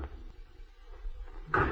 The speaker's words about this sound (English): Hark, more knocking.